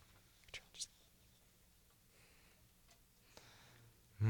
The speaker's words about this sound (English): Who's he gonna take? He's flipping through the papers.